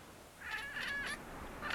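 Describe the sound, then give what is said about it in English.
A cat chatters in quick, stuttering bursts, a rapid run of clipped chirps followed by a brief pause and another short flurry, moderately loud with no one talking. “stopped when he heard Midnight chattering”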